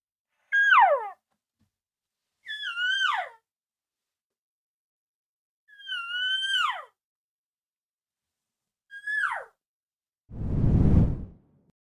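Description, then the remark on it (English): Four imitated cow calls, given as cow talk with inflection after setting up in a calling spot: high, nasal mews that each slide downward with shifting inflection, spaced a couple of seconds apart, followed by a short breathy whoosh. “We've got into our spot, and we're just going to kind of start calling and throwing out cow talking, and then maybe a little bit of inflection with those cow calls, and it'd be something like this.”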